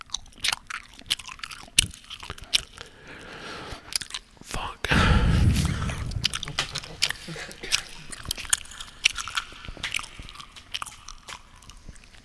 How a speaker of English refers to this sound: I'm chewing gum right now.